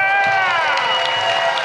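An audience at a convention cheers loudly and steadily, sustained whoops and voices riding over a dense wash of clapping, continuous from start to finish.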